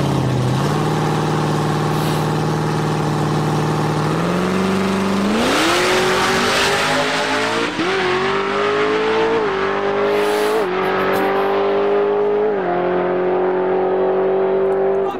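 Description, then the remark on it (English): A Camaro drag racing car's engine roars loud as it launches, the pitch climbing through several sharp gear changes while it accelerates hard, with no voices over it. “That right there, that little turn right there, that, you know, once the nose comes up on IRS cars, they tend to steer left.”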